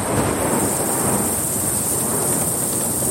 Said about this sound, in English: So it just that was the lightning and the horse galloping off. Yeah. He throws the lightning bolt right in front of the chariot to stop them in their tracks is what he did, you know.